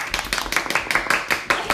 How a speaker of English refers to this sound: Here, we should give them applause.